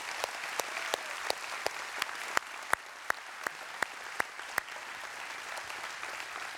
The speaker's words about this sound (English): you're in law enforcement or if you're in an emergency response position, would you just raise your hand? I'm not going to embarrass you, I promise. Just slip them up. Awesome. Let's give them a round of applause and just thank them for what they do.